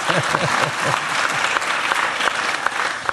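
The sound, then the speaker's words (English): An audience applauds loudly, a dense, steady wash of many hands clapping that lasts throughout, with a brief voice or cheer audible under it at the start. “And you can give me a round of applause for doing what Lionel Messi could not do.”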